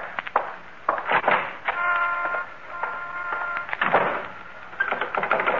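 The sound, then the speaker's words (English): The front door of a shop being locked: a run of sharp metallic clicks and rattles from the latch and bolt, with a brief squeaky scrape in the middle, then a few final clacks. “And now the front door.”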